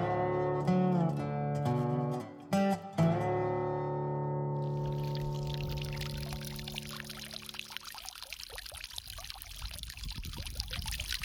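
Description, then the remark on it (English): Water runs steadily in a desert, starting with a resonant, humming tone as it pours, then opening into a broad, continuous splashing rush that carries on to the end. No one speaks. “When you've been walking through a desert, that is a very pleasant sound. Water has become all important to us.”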